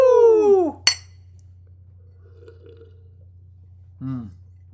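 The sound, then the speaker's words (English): A falling, drawn-out vocal sound gives way to one sharp, ringing clink of beer glasses as people drink beer. A near-silent stretch with faint murmuring follows, then a brief voiced sound near the end. “You'll hear our names again in just a second, but okay, we'll finish our beers first.”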